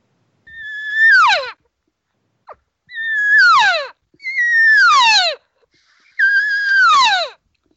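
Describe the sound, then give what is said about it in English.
Four drawn-out, nasal cow elk calls made on a cow call to call a bull elk over, each a mewing whine that holds briefly then slides sharply downward, separated by short pauses with a faint click between the first two; no talking. “And as soon as I do that, I start going back to my sequence just for a short time now, 30 seconds, and I hit the cow call again.”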